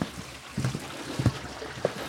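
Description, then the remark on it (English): A small stream trickles and gurgles, with irregular soft splashes and bubbling bursts over a steady wash of running water. “And a different trickle, interesting.”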